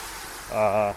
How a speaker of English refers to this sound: Bless you.